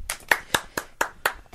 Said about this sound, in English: Single applause.